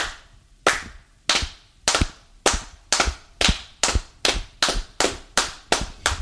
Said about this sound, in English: So it is an applause, but it was almost like this, like, you know, this kind of almost, I don't know how to say it, like a chant, it was just a rhythmic clap that was all synchronized.